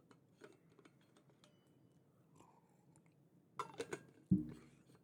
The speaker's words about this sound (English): hang on just a sec, I need to get a quick drink of water. Stand by.